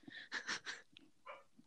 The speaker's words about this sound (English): Sorry. Oh, it's a dog.